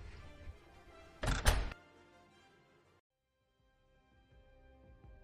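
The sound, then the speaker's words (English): A door swings shut with a single solid, loud thud against a low background hum that fades to near silence afterward. “So, before I continue, why don't we take a moment while I close the door?”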